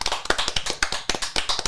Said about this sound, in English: Clap it up.